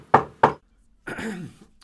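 Two firm knocks on a door in quick succession, followed after a short pause by a brief voice speaking.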